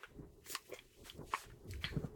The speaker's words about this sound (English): Let me take a sip of water because we're going to be here a little long today. Let me take a sip.